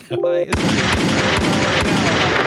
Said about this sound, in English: Like, can I get a gunshot, please?